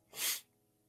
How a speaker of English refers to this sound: Like I said, once again, y'all forgive me for coughing, just dealing with it.